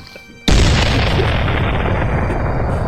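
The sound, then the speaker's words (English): A moment of quiet, then a single sudden, loud cannon boom, one shot of a 21-cannon salute, that keeps roaring as a broad, heavy rumble until the end, with no voices. “You check your voicemail as 21 cannon shots.”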